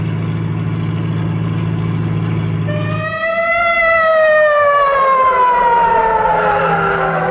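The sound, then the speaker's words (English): A steady engine rumble gives way to a loud ambulance siren that rises and then slowly wails downward, sustained over the traffic noise, with no voices. “I was just thinking, if we crack up, we got an ambulance handy.”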